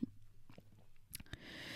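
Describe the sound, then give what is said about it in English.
Quiet mouth sounds of someone gulping a drink: a few soft wet clicks and swallows, then a breathy rush of air at the end. No one speaks. “Should we do both or just take a gulp for the fact that he's military?”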